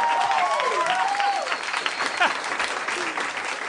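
A crowd applauds the DM steadily for the whole few seconds, a dense, even patter of clapping, with a few sliding whoops and cheers rising and falling over the top.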